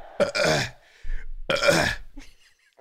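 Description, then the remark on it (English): Two loud, drawn-out burps, each lasting about half a second with a throaty, rumbling tone, separated by a brief pause and some low rustling. “I was trying to get a fart to come out while I was burping so that I could make this go viral, but it's not easy to shit yourself while you're burping.”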